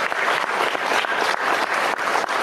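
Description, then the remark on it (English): Sustained, vigorous applause from an audience, a dense steady wash of many hands clapping at once with no voices standing out, loud and continuous throughout. “Good vigorous applause, guys.”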